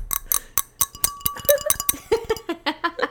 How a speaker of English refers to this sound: I liked in that last episode where we were going clink, clink, clink, clink, clink, clink.